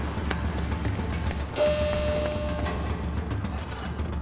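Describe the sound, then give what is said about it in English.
Steady rain pours down in a continuous, dense hiss, with a brief brighter rush of spray partway through. No voices are heard. “Okay, the rain is a-pouring.”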